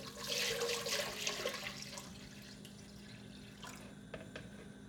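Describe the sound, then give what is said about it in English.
Water splashes and gushes into a cooking pan in a kitchen while macaroni and cheese is being made, a bright rushing pour that tapers off into quieter trickles and faint clinks, with no talking. “I had to pour the water into the pan. That's what you can hear.”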